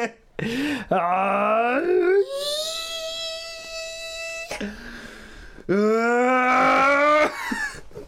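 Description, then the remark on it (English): A screaming chorus of people's wailing voices, laid over each other, imitates the THX logo sound, sliding upward into a loud sustained harmonic chord, breaking off, then swelling up again in a second rising screaming sweep. “He's laying over each other. And it's just a screaming chorus of people.”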